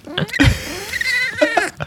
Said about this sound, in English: Yeah, Bagheera, his little screamy meows. That doesn't sound real either.